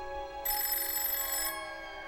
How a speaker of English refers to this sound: it's the phone.